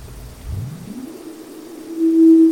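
A synthesizer tone runs through a high-pass filter set almost all the way open with its resonance turned up high: a low rumble sweeps upward, then settles into a steady, sharply ringing whistle-like pitch that grows louder near the end. No one speaks.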